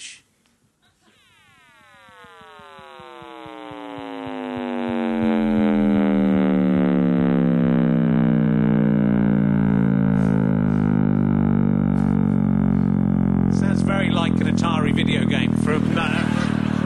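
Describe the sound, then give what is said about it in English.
A sonification of the Big Bang, a sound originally far too deep to hear, boosted in frequency a million times: a harmonic-rich synthetic tone that slides steadily downward in pitch and swells into a loud, sustained roaring hum, with a harsher noisy texture toward the end. “So that's actually been boosted in frequency by a million times for you to hear it.”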